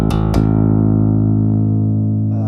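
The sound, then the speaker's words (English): A bass guitar note, plucked twice and left to ring, runs through a filter effect modulated by a sine wave that sweeps its tone smoothly. It is loud and sustained, with no voices. “There's your sine wave.”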